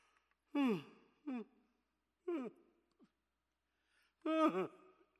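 human body sound, yawn

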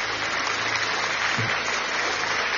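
crowd, audience clapping hands

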